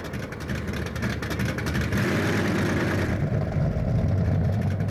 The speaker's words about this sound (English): Love the sounds of those cars.